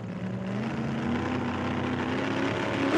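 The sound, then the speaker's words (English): A hydroplane's powerful engine roars steadily, its droning tone climbing gradually as it revs into turbo mode, with a sharp rise in pitch at the very end. No voices. “The hydroplane revs into turbo mode.”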